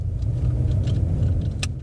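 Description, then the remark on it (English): A car's steady, low engine rumble fills the short stretch, with faint jangling and a sharp click near the end as someone gets back into the car and drives off. “But as fun as it is, to make sure I didn't add to the parking problem, after I got a good look and talked to the few people, I got back in my car and I kept driving.”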